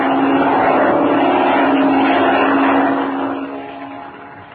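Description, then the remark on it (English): In a Captain Midnight radio drama, the engine of a black airplane flying directly toward the characters drones loudly and steadily with a low, throbbing hum, holding strong for a few seconds before gradually fading away toward the end. No voices are heard. “It's a plane, Chuck. There it is. A black one. Flying directly this way.”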